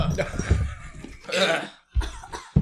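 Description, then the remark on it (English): A loud, rough burp erupts, a guttural throaty rasp lasting about a second, with brief vocal grunts and breathy noises around it. “That was a hot burp.”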